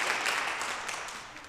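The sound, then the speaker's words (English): An audience claps steadily for about a second and a half, a dense, crackling wash of many hands at even loudness, tapering only slightly toward the end, with no voices over it. “All y'all should clap. All of you.”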